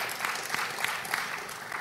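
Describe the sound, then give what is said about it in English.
A church audience applauds steadily as a clap offering for Jesus, a dense wash of many hands clapping at once with a few sharper claps standing out, at a fairly even level for a couple of seconds. “Can we give Jesus a clap offering, my beloved friends?”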